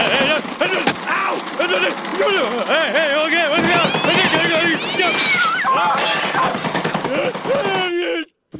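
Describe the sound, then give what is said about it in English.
An all-purpose electric hammer, shown off as an invention, pounds rapidly and loudly for about eight seconds, with overlapping yelps and groaning voices over the clatter, then stops abruptly. “First, my all-purpose electric hammer for all your pounding needs.”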